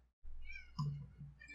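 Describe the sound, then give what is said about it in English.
A cat meows loudly, a drawn-out, wavering call with a second shorter meow following right after, against a quiet background. “I have very loud animals, like my cat.”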